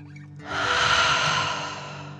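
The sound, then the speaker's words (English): A single long, deep breath in and out, a soft airy whoosh that swells and then slowly fades, with no talking over it. “As you continue to float, let's take 3 more deep dragon breaths. Deep breath in and out.”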